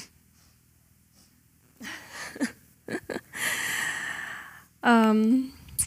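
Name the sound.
sniffling into the microphone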